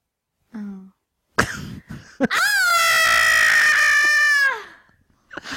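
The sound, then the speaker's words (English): A person imitates a shocked child's scream: a brief murmur and sharp gasp, then a loud, sustained high-pitched shriek held for about two seconds before dropping away. “That's just a scream? Yeah, do that.”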